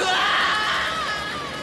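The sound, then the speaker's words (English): A person voices a drawn-out, strained cry imitating a video game character's star KO death scream from the fourth Smash game, loud, sliding downward in pitch over under two seconds. “Yeah, but I think he has the best death scream in 4. When he would star KO, he'd just go, ah! Oh!”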